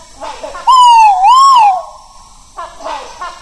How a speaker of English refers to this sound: I wasn't expecting this noise, but this was such an amazing experience. I'd got rhinoceros hornbills in a tree above my head, and I'd got an Argus pheasant standing behind me, and both were calling.